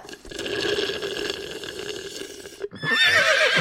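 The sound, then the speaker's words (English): A long, wavering unicorn neigh holds steady for over two seconds, then breaks off into a burst of bubbly, gurgling liquid sounds, like slurping through a straw. “I was just having a sip of my frappuccino and this unicorn asked for it so nicely.”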